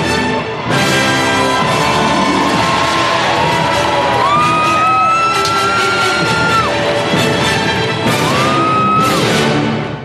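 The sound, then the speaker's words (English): A huge crowd of Washington Nationals baseball fans in DC roars and cheers continuously and loudly, welcoming the 2019 World Series champions to the stage, with shrill whoops and whistles rising above the dense wall of noise and a brief louder swell near the end. “Make some noise. Let's show them what DC sounds like.”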